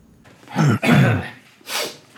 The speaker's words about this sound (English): I'm just going to cough and snort into my mic every time we start recording. Just to disgust myself later.